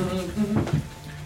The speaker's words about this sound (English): We're letting the cat out the door. You're gonna let it out the door, okay.